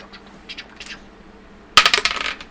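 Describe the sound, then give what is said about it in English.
Dice clatter onto a hard table, rolling a natural 20: a sharp first hit, then a quick run of bright, decaying rattles and taps that settle within a second. Faint light clicks come before it, with no talking. “Ooh, that would be a natural 20.”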